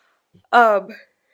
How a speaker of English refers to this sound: That's a big yawn there. I don't know. I'm just tired. I'm not sleeping well.